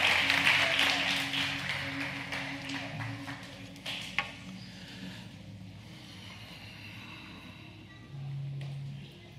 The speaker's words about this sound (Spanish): Vamos a colocarnos de pie. Dale un aplauso bien fuerte a Dios.